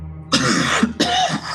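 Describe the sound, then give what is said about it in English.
A voice imitates a character's two harsh, raspy coughs in quick succession, loud, each a rough burst about half a second long with a brief gap between them. “As he's coughing, you can see some of the phlegm itself is also growing in this material.”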